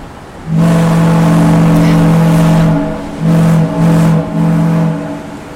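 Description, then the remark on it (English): A ship's foghorn at Woods Hole on the Cape in Massachusetts, sounded as the ship sets off: a loud, low, droning blast lasting a couple of seconds, then a few shorter blasts of the same deep, buzzing pitch, the last trailing off. “Well, that's the foghorn coming directly to you from the Cape over here in Massachusetts.”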